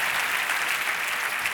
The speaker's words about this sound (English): I'm 18. I don't work at Dutch. I completely snuck in here. Let's clap it up for the hustle.